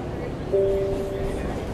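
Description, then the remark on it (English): A steady low rumble of a moving subway train at Jackson Square station, next stop Roxbury Crossing, with a brief, sustained electric whine rising over it partway through, like a motor humming as the car travels. “This is Jackson Square. The destination of this train.”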